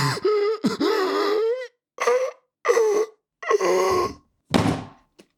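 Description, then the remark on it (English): Heavy, hacking coughing from another room with strained, groaning vocal tones: one long rasping fit, then four shorter harsh bursts separated by brief silences, fairly loud, with no talking. “You hear from the other room some pretty serious hulking coughing.”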